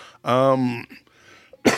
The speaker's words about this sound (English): cough, cough, cough.